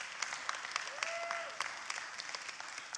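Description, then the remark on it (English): An audience claps in a steady patter of many hands, moderately loud and sustained, with a brief voice-like tone rising and fading partway through. “Now, for those of you who don't have the liberty to clap when you worship, you can say amen.”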